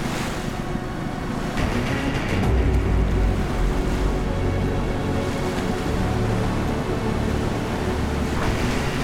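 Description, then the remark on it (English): The engines of landing craft ferrying men to shore grind and rumble steadily while waves swish and wash around them, with gusts of wind buffeting the microphone; no one speaks. “Rocket ships launched the final broadside, and then silence fell, apart from the grind of the landing craft engines and the swish of the waves.”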